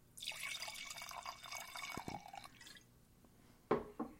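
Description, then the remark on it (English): Liquid pours steadily in a splashy stream for about two and a half seconds, then stops, followed by a couple of distinct drips. No one speaks. “I think we need to pour one out for Hedwig.”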